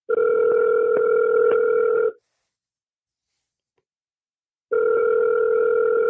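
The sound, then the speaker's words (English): A telephone ringback tone heard from the caller's end of an outgoing prank phone call: a steady electronic burst of about two seconds, a few seconds of silence, then the next burst begins. No one speaks. “Call him back.”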